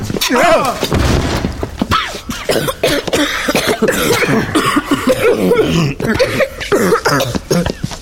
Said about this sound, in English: Look out, the hinges are breaking now.